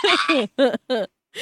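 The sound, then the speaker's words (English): A person imitates the voice of a chicken with a few short, throaty clucking bursts separated by brief pauses, loud. “She wants you to do the voice of the chicken.”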